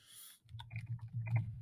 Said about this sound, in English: Oh, here we go. He's typing. He's typing.